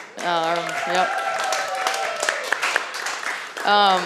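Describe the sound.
An audience applauds a coach who is present at the event, with scattered claps under loud whoops and cheering voices, a steady crowd noise that swells again at the end with another sustained shout.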